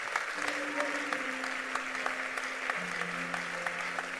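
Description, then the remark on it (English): A church audience claps steadily and continuously for people coming forward to be prayed for, a dense wash of many hands with a few sharper claps standing out, while a sustained musical tone hums underneath. “The way you clap for them, that's how they will clap for you this year.”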